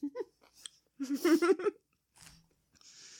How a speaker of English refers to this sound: Sorry, I'm chewing. Well, drink if you hear me chewing.